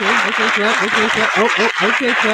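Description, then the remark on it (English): Steady, loud clapping from a group of people, continuous for a couple of seconds, mixed with raised voices and cheering over the top. “Okay, clap. All right, enough.”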